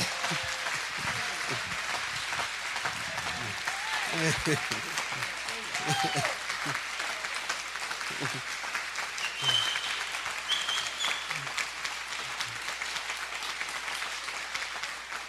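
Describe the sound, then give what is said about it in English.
A church audience applauds steadily after a candidate for teaching pastor is presented, a dense wash of many hands clapping, with a few faint voices and whoops surfacing through the sustained ovation. “You can clap again.”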